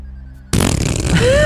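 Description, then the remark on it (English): A loud, sputtering fart noise blown with the mouth, a raspberry lasting about a second after a brief quiet moment, with no talking around it. “Fart noises.”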